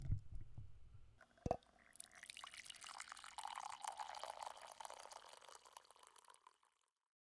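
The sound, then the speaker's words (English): A low clunk of a cup being set down, then a steady stream of coffee pouring into it for several seconds, the pitch rising as it fills, with no one speaking. “let's pour a cup of coffee and get to know Elysia”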